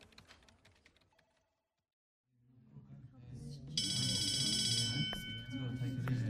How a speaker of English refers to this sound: Everyone into your seats. The bell has rung.